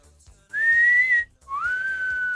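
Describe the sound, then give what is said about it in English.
A person whistles a two-part catcall: a bright rising note that holds, a short pause, then a lower sliding note. Loud and clear, with no talking. “I guess she whistles. She catcalls.”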